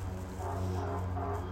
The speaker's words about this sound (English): Where's that honking coming from?